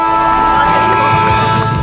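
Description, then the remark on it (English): A loud, steady burst of crowd noise, like an audience cheering through a round of applause, filling the whole short moment with no clear pause. “big round of applause for him.”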